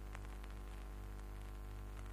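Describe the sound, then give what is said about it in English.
Steady crackling radio static with a low electrical hum underneath, continuous and fairly quiet, with faint bursts of hiss flickering through; no voices. “The only sound's that belly static.”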